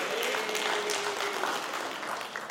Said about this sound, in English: My wife turned 31 years old yesterday. Yeah, that's worth clapping. I think that's good.